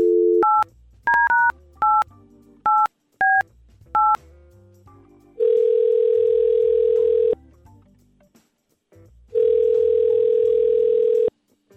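A phone number is dialed with a quick series of touch-tone beeps, followed by two long ringback tones from the outgoing call, separated by a pause, clear with no talking.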